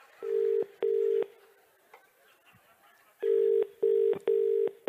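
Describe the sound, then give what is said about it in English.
A telephone ringing tone after a number is dialed sounds in loud, steady electronic beeps: two bursts, a quieter pause with faint rustling, then four more bursts in quick, uneven succession. No one speaks. “That's not how a phone rings. It went nuts. It's remixed.”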